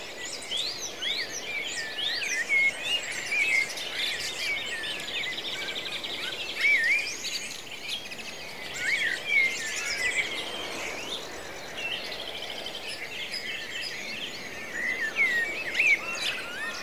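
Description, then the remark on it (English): Song thrushes and blackbirds sing a dense dawn chorus by a field with mist rising off it, at the start of the dawn chorus, with overlapping whistles and trills pouring out continuously from several birds. Nobody speaks. “But really, I mean, from what I can hear around me, is the song thrushes and the blackbirds are really holding court at the minute.”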